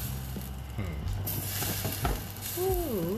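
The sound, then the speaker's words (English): A pot of greens boiling over on a gas stovetop, its spill hissing and sizzling in a steady crackle, with a short vocal murmur rising near the end. “Ooh, it's boiling. Yeah, you probably can hear it. Oh yeah, that's how you know you cooking, when the greens overflowing.”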